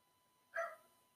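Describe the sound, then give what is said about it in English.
A single short dog bark rings out against a quiet background, one brief sharp burst with no voices around it. “The dog cussing me out right now.”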